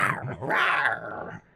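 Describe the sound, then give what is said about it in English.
A person imitates a raptor, letting out one loud, raspy growl that rises into a harsh screech and holds for over a second before cutting off. “I'm a raptor.”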